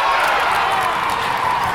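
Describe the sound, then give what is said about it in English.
A steady, dense roar from hundreds of spectators at the local arena in Maniutinam cheering their favorite team at the Mario Vallon Hockey Tournament; loud and continuous, with cheering and a wash of indistinct voices blending together without any clear individual words. “Hundreds are gathered at the local arena in Maniutinam to cheer their favorite team.”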